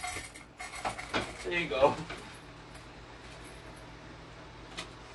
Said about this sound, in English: There you go. I open the door and he's like, do I go out? What am I doing here?